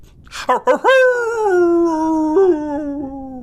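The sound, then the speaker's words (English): A few short yelping barks lead into one long, loud wolf-like howl that slowly slides downward in pitch, sounding like a man's voice imitating a werewolf's howl, alone. “Take it from this man-wolf.”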